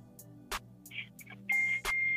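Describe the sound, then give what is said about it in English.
Electronic beeping: a couple of short high-pitched beeps, then a long steady shrill tone, broken by sharp clicks over a low hum, with no one talking. “You can't do that beeping, sir.”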